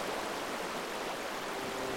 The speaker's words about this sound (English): The underground river carried us through caverns I could only imagine in the dark.